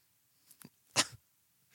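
A few quick, breathy sniffs through the nose at a South Korean Oreo cookie in silver packaging: two short ones, then a stronger, louder inhale, and a faint final sniff after a pause. No talking.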